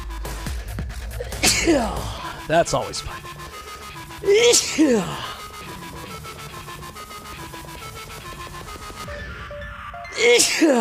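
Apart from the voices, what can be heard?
repeated sneezes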